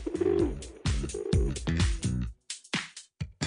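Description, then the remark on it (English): Pigeons coo in a fairly loud series of low, throaty calls that follow each other rapidly, then break into shorter, clipped coos with brief gaps toward the end. “I bet those pigeons are eyeing off that clean dome now with full bellies and an evil glimmer in their eyes.”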